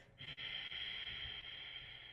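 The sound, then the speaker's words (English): A throat-constricted breath exhaled through the nose: a steady, soft, whispery hiss that starts after a brief catch and holds evenly for about two seconds, with no talking. “You still hear me tighten the back of my throat so that I can whisper that sound, ha.”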